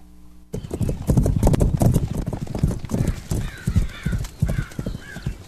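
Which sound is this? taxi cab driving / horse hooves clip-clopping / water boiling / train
horse hooves clip-clopping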